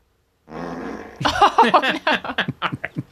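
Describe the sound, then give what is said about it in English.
A drawn-out fart, starting as a steady low buzzing tone, then breaking into a loud sputtering run of about a dozen quick pops that gradually shorten toward the end. “I like it when farts sound like a question. That one sounded like what?”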